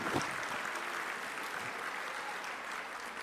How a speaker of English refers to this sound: So inshallah ta'ala, let's all give them a round of applause and appreciate what they're doing for us.